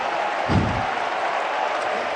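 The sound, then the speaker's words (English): An audience claps and shouts together in a dense, continuous roar of hands and voices, with a brief low thump early on, holding steady throughout. “Keep shouting. Keep clapping your hands.”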